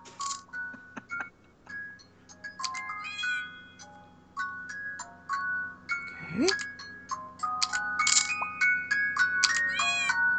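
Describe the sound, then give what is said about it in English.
Bright electronic chimes and tinkling jingles from a phone game, with a short cartoonish cat meow rising midway, layered over a steady low hum of background music. “I need to check up on Neko Atsume. Ooh, I don't have this cat in my book yet.”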